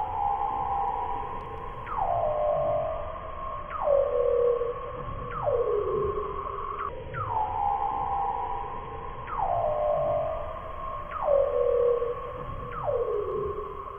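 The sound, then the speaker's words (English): Weddell seal calls underwater: a repeating series of eerie, descending whistles, each sliding sharply down in pitch before trailing off, about eight in a row over a low watery rumble. “Yeah, those are underwater vocalizations.”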